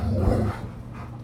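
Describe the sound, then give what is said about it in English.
A dog gives one short bark or yip, one of several dogs wound around recording equipment, then it falls to low background noise with faint movement. “Hang on, we got many dogs wrapped around many pieces of pod equipment here.”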